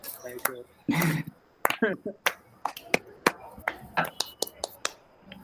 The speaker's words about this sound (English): Let's add a clapping thing.